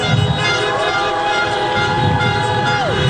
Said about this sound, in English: Honk your horn if you want to have civility again.